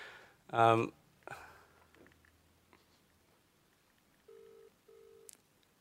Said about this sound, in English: The phone's ringing.